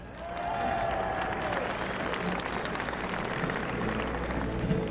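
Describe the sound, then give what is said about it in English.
An audience claps for a performer being introduced on stage, a dense, continuous wash of applause that swells in during the first half second and holds at an even, fairly loud level, with a few faint voices and whistles mixed in. “applause, he needs no further introduction.”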